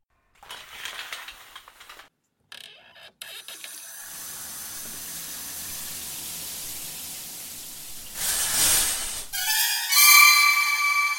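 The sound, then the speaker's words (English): A few clicks and knocks give way to a steady hiss of shower water running, which swells into a louder gush before a high, squealing tone rises at the end. No one speaks. “And now to take a cleansing shower.”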